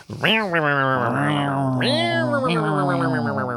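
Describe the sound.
A loud voice imitates a yowling cat crossed with a revving dirt bike engine, a continuous wavering wail that swoops up and down in pitch for a few seconds.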